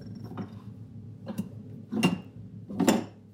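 A refrigerator hums low and steadily while it vibrates, with four short rattling bursts spaced about a second apart, the last two louder. No one speaks.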